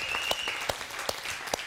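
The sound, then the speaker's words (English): A church audience applauds steadily during morning worship, giving praise to God, with dense overlapping claps and a few sharper, louder hand claps standing out at regular intervals. A faint sustained tone runs underneath early on. “I know we just clapped, but can we say welcome to our online audience this morning?”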